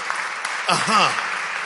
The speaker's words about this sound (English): I think your clap is telling me that this is a point you've understood.